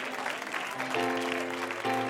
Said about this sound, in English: Would you give the Lord and pastor a hand clap as he comes to the pulpit?